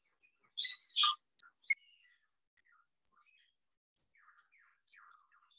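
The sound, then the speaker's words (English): A superb lyrebird of South Australia sings a rich, varied song: loud ringing whistles and sharp chirps up front, then softer warbling trills that fade into quieter, scattered calls, heard alone with no talking. “Has the most elaborate, the most complex, the most beautiful song in the world.”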